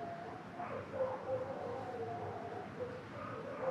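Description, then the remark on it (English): One of several pet dogs howls in long, wavering tones over a low background rumble, with a few short yips or barks mixed in; the sound is fairly quiet, with no one talking. “my dogs are like howling. One of them is howling right now.”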